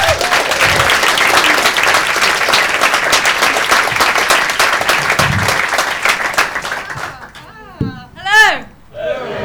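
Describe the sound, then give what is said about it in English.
Loud, dense applause from an audience welcoming a comedian on stage for a five-minute set, many hands clapping in a steady wash for about seven seconds before fading, then a voice begins speaking as the clapping dies away. “will you please give a massive round of applause, just trying to get round,”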